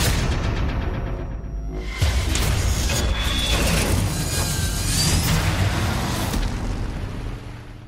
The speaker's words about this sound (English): Oh, and there they go. They got cars blowing up, rolling over.